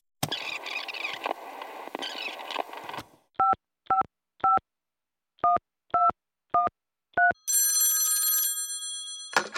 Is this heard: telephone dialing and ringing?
yes